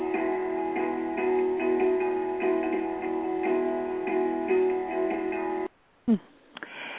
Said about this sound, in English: Oh, yeah, I just love that song. It's so energizing to me, and I'm hoping that it's energizing to you too